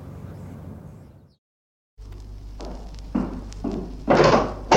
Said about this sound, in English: Why did you slam the door?